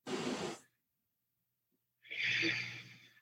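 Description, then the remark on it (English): Slow, deep breathing in through the nose and out through the mouth: a breathy rush trails off, then after a silent pause of over a second comes another long, airy breath. No talking. “Breathing in your nose and out your mouth.”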